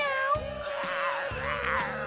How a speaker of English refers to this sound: Here we go. Meow. You know what it is. There it is, the Cincinnati Bengals edition of our Here We Go song.